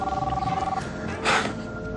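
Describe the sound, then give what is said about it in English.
A telephone in the film The Big Lebowski rings with a rapid warbling trill for under a second, then cuts off, followed by a brief rustling clatter and a low background murmur. “Phone's ringing, dude.”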